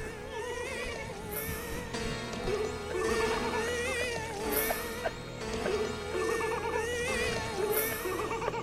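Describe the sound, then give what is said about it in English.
A sustained, droning musical chord plays continuously under the wavering, high-pitched crying of a woman and bursts of laughter from a man, all layered into one dense, discordant mix that swells in repeated waves. “I was thinking that the most annoying sound in the world would probably be that chord played over the sound of … crying, played over the sound of …”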